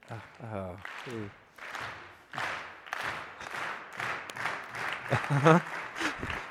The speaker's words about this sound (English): You can tell Jay and Todd are not here because we just slow clapped